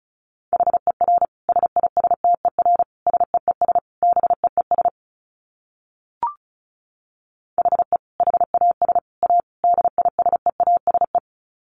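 Rapid Morse code at about 35 words per minute: a steady mid-pitched tone keyed in quick dits and dahs, two bursts of sending separated by a pause with a single faint click.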